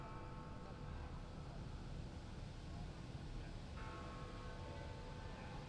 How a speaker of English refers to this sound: So yeah, those chimes that you're hearing in the background, we're not actually in London. It is the chimes of Big Ben,